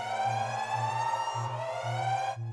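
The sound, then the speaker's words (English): Loud electronic alarms blare without pause: a steady, harmonically rich tone over a low buzzing pulse that throbs roughly twice a second, with no voices, until the tone cuts out near the end. “Shut off the damn alarms.”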